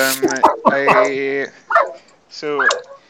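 Several loud bursts of dogs barking and yipping while being corralled, with whiny drawn-out cries between them, coming in uneven clusters over a few seconds.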